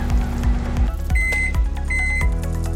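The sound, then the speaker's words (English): A microwave oven heats a plate of picadillo with rice and black beans and leftover mac and cheese for one minute, humming steadily with a low, pulsing drone, and a couple of short, high electronic beeps ring out over the whirring. No one speaks. “He eats the cold banana while the microwave runs.”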